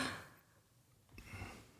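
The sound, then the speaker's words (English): A pair of short, breathy coughs, one at the start and another about a second later, fairly soft and rough with a quiet pause between them and no talking. “God, freaking coughing.”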